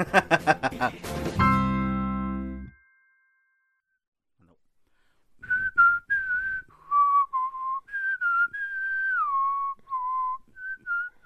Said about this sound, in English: Rogue One song. That's not Rogue One, dude. That's Jurassic Park. So why am I whistling that?